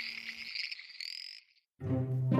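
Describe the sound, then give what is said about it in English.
Frogs croak in a dense chorus, a high trilling buzz giving way after a brief gap to lower, throaty grumbling calls, close and fairly loud with no talking. “Nodding in thanks, Vellichor began to dig up his herbs as the frogs grumbled in protest around him.”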